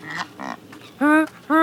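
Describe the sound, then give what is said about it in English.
Cape Barren geese on the grass of green cliff tops in the late afternoon give a few low, grunting calls and then two loud, drawn-out honks in quick succession, with no other sounds around them. “Oh, they're Cape Barren geese.”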